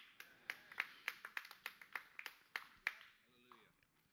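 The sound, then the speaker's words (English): A single person in the front row claps about a dozen times in a quick, slightly uneven rhythm, each clap sharp and bright, before the clapping stops and a faint voice murmurs. “I think he's deserving of more than a clap in the front row, wouldn't you say?”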